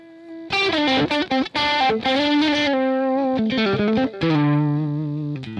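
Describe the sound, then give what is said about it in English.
A distorted electric lead guitar plays a loud, sustained melodic phrase of bent and held notes with quick picked runs between, attack swelling softer and harder, heard alone without any voice. “But if I was playing over something that's more mellow, you see, I can use the dynamics of the way I'm picking by picking softer and louder.”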